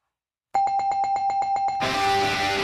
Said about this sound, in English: I'm giving it the bell for Mako.